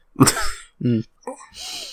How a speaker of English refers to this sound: The fun stops when I cough up mucus.